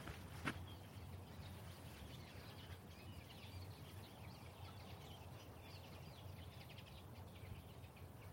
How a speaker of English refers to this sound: You might be able to just make out the crowd of linnets and some goldfinches chatting away up in the trees here.